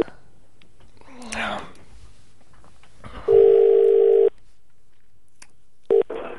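A telephone dial tone hums steadily for about a second, then cuts off; a brief keypad-like beep follows moments later, with faint rustling and handling noise around it.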